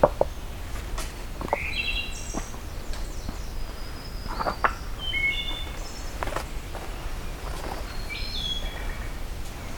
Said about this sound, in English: Okay, as I'm heading back, getting treated to a wood thrush here. Which I'm not sure if I had that species yet in here, in this breeding bird atlas.